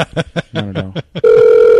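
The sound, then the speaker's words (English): Brief voices and chuckling give way to a loud, steady phone ringing tone. It is the droning ringback of an outgoing three-way call, which starts abruptly and holds unbroken to the end. “Do they have any idea that we're calling?”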